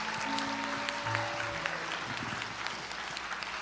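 An audience applauds with dense, steady clapping that fills the whole clip at an even loudness, while a few sustained low tones hum underneath during the first couple of seconds.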